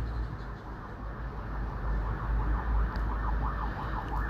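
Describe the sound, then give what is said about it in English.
An emergency vehicle siren wails outside, its rapid rising and falling sweeps growing clearer over a steady low rumble of traffic, with no one speaking. “The sirens are making me tired. It's a noise war.”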